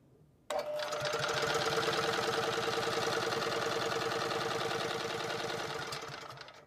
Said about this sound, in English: So now I've got the engine motoring with no hydrogen. So it's not doing any work. This electric motor is doing all the work.